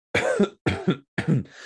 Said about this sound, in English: Yeah, you might as well clear your throat.